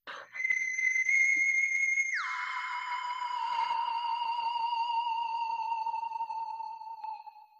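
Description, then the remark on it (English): A phone alarm sounds as a steady, high electronic tone that suddenly drops to a lower, buzzier pitch after about two seconds, then holds and slowly sags before cutting off. No one speaks. “My alarm.”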